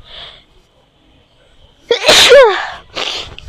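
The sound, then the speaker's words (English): After a quiet pause, someone lets out one loud sneeze with a sharp voiced burst, followed moments later by a short breathy exhale or sniff, in cold, windy weather. “Sorry if my sneeze is making your ear hurt or you feeling uncomfortable.”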